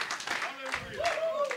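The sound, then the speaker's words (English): Scattered, uneven clapping from a group giving glory to God during a bilingual Spanish-English sermon, a few quick bursts of hand claps rising and fading, while a voice and a sustained tonal sound carry on over them. “Someone has to clap.”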